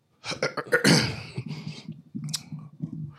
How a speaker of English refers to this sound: Clear your throat.